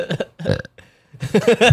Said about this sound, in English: You get mad if I burp in the mic?